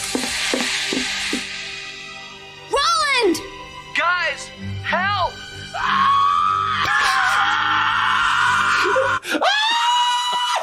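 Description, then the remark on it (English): A cartoon character, Roland from Ghostbusters, lets out a series of loud, high-pitched screams and wails, rising and falling in short bursts before one long, sustained shriek that cuts off abruptly. “And, you know, the worst scream came from a Ghostbuster.”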